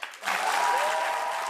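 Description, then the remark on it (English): A crowd bursts into sustained applause and cheering for a tearful Drew Barrymore. Dense clapping rises quickly after a brief start and holds steady and loud, with excited whoops mixed in. “And the crowd goes wild when Drew Barrymore is in tears.”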